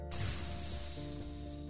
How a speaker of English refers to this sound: As soon as it hit his tongue, it sounded like water being poured on fire.